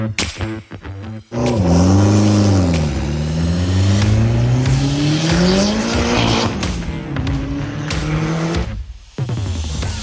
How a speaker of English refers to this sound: that car sound is sent in courtesy of Scott. That is his Mitsubishi Eclipse. Definitely boosted